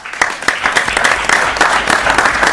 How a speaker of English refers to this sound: You had a nice picture with the mayor, and the city council is clapping for you.